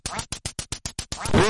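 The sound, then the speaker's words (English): A rapid run of about eight loud duck quacks in a steady rhythm, ending in a longer, drawn-out quack, with no voices. “I think technically, wouldn't that be a row of ducks?”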